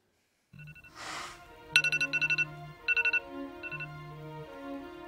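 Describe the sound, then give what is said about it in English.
A phone ringtone plays alone, loud: a bright electronic melody with bursts of rapid repeating beeps and a sustained low tone, lasting several seconds. “Everyone just checked their phone.”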